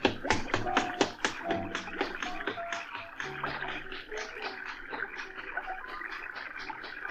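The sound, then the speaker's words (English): Quick, regular running footsteps, a radio drama sound effect, sharp taps at a steady brisk rhythm that carry on throughout, with faint tonal hums beneath and no voices. “And sure enough, moments later, I heard some footsteps coming back.”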